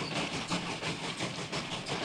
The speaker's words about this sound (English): Oh, we're ready to get on the hype train? It's time for the hype train. Choo-choo!